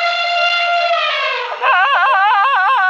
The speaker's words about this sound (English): What was that sound? Oh, was that an elephant? You got it. That was my friend Bibi. She asked who I was talking with, and I told her about you.